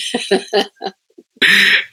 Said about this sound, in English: You know, you can see, I still have that little bit of a cough. And I said, you know what? That's the perils of diving in cenotes, but would I give that up for that? No.